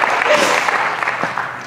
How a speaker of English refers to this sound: Jeremiah 20, you can clap for that. God's good.